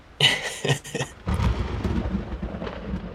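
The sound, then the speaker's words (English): A sharp, crackling burst of thunder from a storm with lightning cracks, then rolls into a deep, rumbling boom that lingers loudly for a few seconds with no voices present. “As you make way up this muddy road through the storms, suddenly lightning illuminates the path ahead of you”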